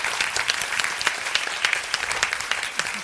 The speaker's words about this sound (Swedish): Åh, en applåd för damen i den gröna filten.